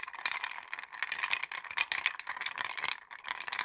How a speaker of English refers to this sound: To make the drink, you first start by putting ice in a rocks glass that you're going to serve the drink in, and you chill the glass.